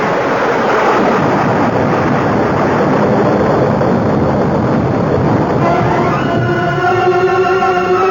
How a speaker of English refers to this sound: A bolt of lightning went straight to Calcimal's iron helmet as though he were a lightning rod. But the explosion...